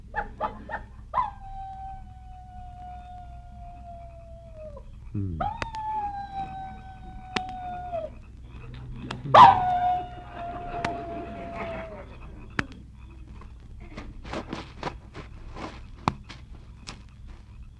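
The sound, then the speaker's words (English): A person lying in a tent after a hike imitates a coyote with three long, sustained howls, each sliding in pitch and trailing off, followed by a few scattered clicks and faint knocks. “How'd you like my imitation of a coyote?”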